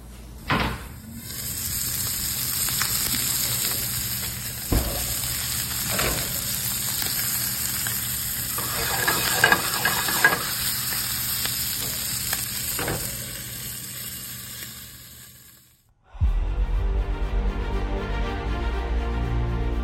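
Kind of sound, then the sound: food or drink, food frying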